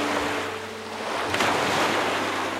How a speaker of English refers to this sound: So the sounds that came to me when I was a boy were the sounds of the environment, were the sounds of insects singing and the sounds of water against the shore.